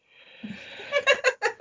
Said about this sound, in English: Sorry, that's a yawn then.